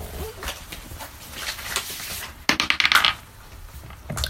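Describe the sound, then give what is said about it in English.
A quick burst of hard plastic clatter as dice are rolled for initiative, tumbling and rattling across a tabletop for about half a second, after a stretch of quiet rustling. “Yeah, so could everyone roll initiative? Yeah. Yep. It's the only thing I'm good at. I haven't even had dice out.”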